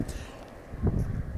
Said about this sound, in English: I wanted to record this morning on my way to work, so now I'm on my way back from work, and hopefully it's slightly less windy, though, as you can hear, still quite windy.